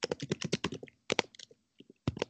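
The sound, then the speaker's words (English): Rapid, uneven keyboard clicking, bursts of keystrokes with short pauses between them, then a final quick flurry of typing. “Are you typing a paper?”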